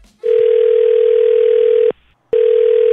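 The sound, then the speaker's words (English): A loud, steady telephone tone from an outgoing call placed by 99.9 Virgin Radio sounds in a long burst, breaks off briefly, then resumes. No one speaks. “We'll call him next with you listening on the phone, okay?”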